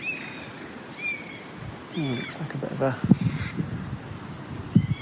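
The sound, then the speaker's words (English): Crows caw repeatedly overhead as they chase away a bird of prey above a forest, harsh calls coming in short bursts, while a voice murmurs and outdoor ambience fills the background. “Crows chasing away a bird of prey.”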